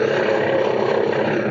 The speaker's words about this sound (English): On the side of a mountain in Southern California, a bleeding man crawls from the scraggly brush. A helicopter hovers above.